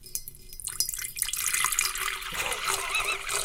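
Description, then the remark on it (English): A tap runs steadily, a broad hissing rush of water that starts after a brief click and builds, with faint splashing and trickling, as water is run for a drink. “Here, just let me get a drink of water real quick.”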